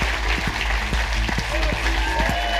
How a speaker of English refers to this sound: Will you give a massive round of applause to the amazing Alan Davies? Thank you very much for coming. Thank you, everyone at RHLSTP Theatre, for having us.